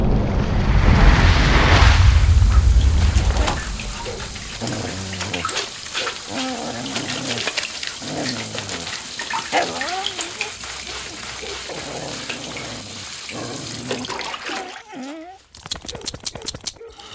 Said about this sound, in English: Back through the water curtain.